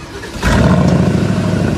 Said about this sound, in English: Yeah, we'll throw a couple revs at it real quick. Oop, I turned it into sport mode. All right, let's listen. Sounds good. Yeah, so what they're saying on this car, it's 500 and something horsepower. It's a 4-liter V8 twin turbo.